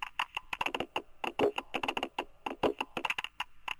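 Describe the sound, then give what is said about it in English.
Rapid, irregular clicking like someone typing on a computer keyboard, dense bursts of sharp taps with brief pauses, fairly clear with no voices. “It just sounds like keyboard noises.”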